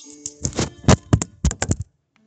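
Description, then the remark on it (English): A Bible is thumped repeatedly against a hard surface during a sermon, about nine sharp, solid knocks in an uneven rhythm, fairly loud, before the sound stops into near silence. “Oop, that was a Bible thump.”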